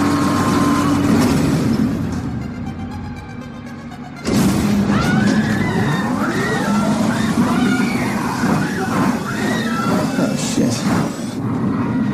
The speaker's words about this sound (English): Yeah, instead of opening the door, they seem to have activated some sort of super speed underground elevator, and they just started flying down this elevator shaft. It looked like it was going on forever and ever, like a quarter, half a mile,